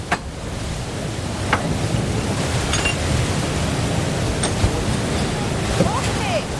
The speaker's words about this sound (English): This is the river Brosna flowing through here, and this is what's powering our water wheel.